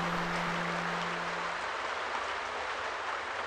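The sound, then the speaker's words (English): A steady, dense hiss of rain pattering on a roof, even and continuous throughout, with a faint low hum underneath that fades out partway through. “Rain fiddles on the roof.”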